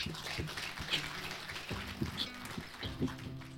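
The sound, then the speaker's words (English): An audience breaks into a brief round of applause, a dense, steady patter of many hands clapping at a fairly even level for a few seconds, with faint murmuring voices mixed underneath. “A quick round of applause.”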